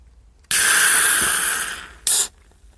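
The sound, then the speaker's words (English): A long, loud fizzing hiss as a carbonated drink is opened, lasting over a second and fading, followed by a second short burst of hiss. No talking. “Oh, yours wasn't as fizzy. Or poppy.”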